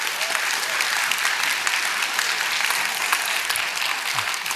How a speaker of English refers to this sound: That's awesome. Let's clap for that.